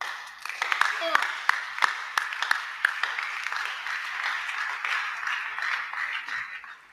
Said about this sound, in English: This your clapping is very weak.